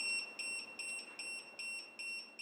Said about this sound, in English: The alarm was, well, it feels like alarm is too strong of a word to give that sound. It had about as much gusto behind it as an alert on one of those buzzers you get from the Olive Garden.